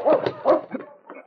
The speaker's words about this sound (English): In the distance, south toward Skagway, he could hear dogs.